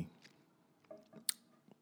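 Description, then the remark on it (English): Soft, wet mouth sounds of someone sipping coffee, with small slurps and lip smacks and one sharper click near the end, all quiet and with no talking. “Sips”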